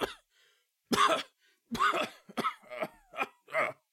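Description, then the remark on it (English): A person acts out a character's coughing fit after washing up on shore: six or so harsh, throaty coughs in uneven bursts, loud, with brief gasping pauses between them as he struggles to his knees, and no speech. “he's coughing up more and more and, like, struggling to get to his knees.”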